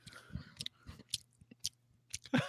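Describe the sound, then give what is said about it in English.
Close-up, wet chewing of chocolate Twizzlers licorice candy right against the microphone, with irregular smacking bursts and soft crunches repeating over a couple of seconds, ending in a louder mouth smack. “I can't do the intro and you're just fucking making chewing noise in the goddamn mic.”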